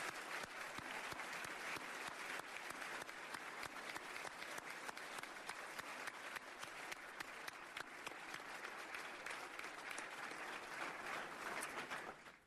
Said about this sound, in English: So let's give a big round of applause to Attorney General.